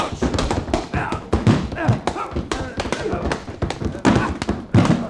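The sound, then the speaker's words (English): Punches land in a fistfight beside a bar lined with bottles: a rapid, irregular flurry of loud, sharp smacks and heavy thuds, with scuffling and indistinct voices mixed in throughout. “The way you're hitting him, he's gonna fall against the bar and upset those beautiful bottles”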